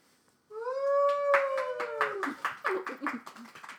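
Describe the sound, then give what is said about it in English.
At a live taping in front of a studio audience, a long, high, wavering whoop or howl-like cry rises over a burst of light applause, a few hands clapping in quick, uneven bursts that trail off after a couple of seconds. “you're a little late with that applause.”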